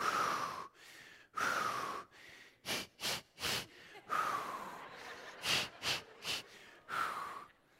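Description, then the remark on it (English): Loud, deliberate deep breathing in a labor-style pattern: long heavy breaths alternating with quick bursts of three short, sharp puffs, repeated rhythmically with no talking. “I know how to breathe, so I'm doing the breathing.”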